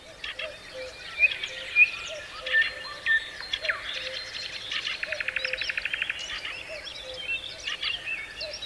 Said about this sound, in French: Parce que tu trouves ça calme, toi? Ah oui. Ah merde. Avec tous ces oiseaux à la con, ils trouvent ça calme.